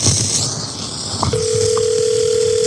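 A hissy, crackling phone line at the start of a recorded phone call gives a click, then a steady, unbroken dial tone that hums on at an even level to the end. No voices are heard.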